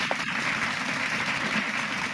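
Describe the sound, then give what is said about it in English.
A steady wash of audience clapping, dense and fairly loud, with many hands blending into a continuous crackle for a couple of seconds and no voices over it. “Wait, everybody clap it up.”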